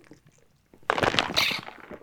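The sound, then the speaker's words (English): After a near-silent moment, a loud burst of crackling, crinkling plastic noise erupts and continues for about a second as a plastic water bottle is squeezed and handled, with no talking. “It's a quality water bottle you got there. Yeah, sorry, was that really loud?”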